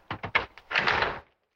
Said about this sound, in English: Okay, I'm home now. The keys are in the door, and the door is locked.